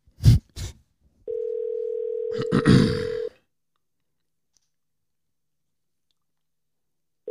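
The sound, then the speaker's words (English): An outgoing phone call rings on the line: a steady two-second ringback tone, then a long pause before the next tone starts, with a few brief thumps and handling noises near the beginning. “Another one with his phone in his lap.”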